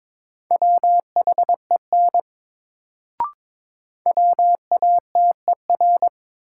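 Morse code beeping at 22 words per minute, sending common words in a practice drill: a steady mid-pitched tone keyed into short dots and longer dashes, two bursts of characters separated by a brief pause with a single sharp click.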